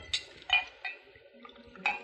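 A drink being poured from a bottle into a glass on sea-worn rocks by the water's edge: a few sharp, bright glassy clinks spaced apart, with a soft, faint liquid trickle in between and no talking.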